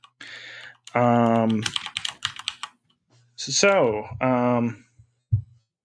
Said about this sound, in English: we can hear your mouse or your keyboard quite a bit. I hear you pecking away at the mechanical.